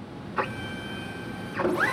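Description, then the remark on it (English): A 3D printer in a genetic testing lab runs, its stepper motors whining in rising and falling sweeps over a steady mechanical hum, with a brief burst early on and a longer one near the end. “Those Comet figures were actually fabricated with the same 3D printer used to design a specialized liquid handling robot that helps process delicate tubes of embryonic cells.”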